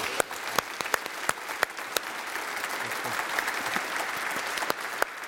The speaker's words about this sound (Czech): Tleskám lidí, co jsou mistři světa, to je v pořádku.